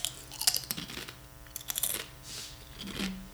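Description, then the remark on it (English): Crisp crunching of someone chewing food as ASMR, with several sharp bites and grinding chews in an irregular rhythm, fairly loud, with no talking. “Crunchy McCrunchy. All I hear is crunchy.”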